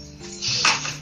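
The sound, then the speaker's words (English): A bunch of heavy keys dropped to the ground: a bright metallic jingle and clatter with a sharp impact and brief rattling shimmer lasting under a second. “Because my keys are heavy. And they like to fall to the ground.”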